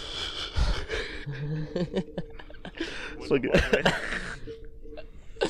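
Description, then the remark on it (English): A drawn-out yawn that breaks into breathy, chuckling laughter, with a person briefly speaking in between. “I fucking yawned into a laugh there.”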